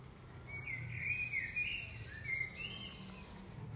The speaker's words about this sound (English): And it is stunning, absolutely stunning, but to be surrounded by the sounds of birds, bees, water running is stunning.